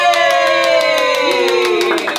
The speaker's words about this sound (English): Take a bow to the camera, clapping, please.